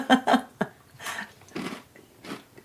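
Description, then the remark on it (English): Two sharp crunches as someone bites into a crisp homemade chocolate chip cookie made with gram and cricket flour, then a short snap and several softer bursts of chewing that trail off over a couple of seconds, with no talking. “Oh, good crunch. Mmm. It's got a solid crunch.”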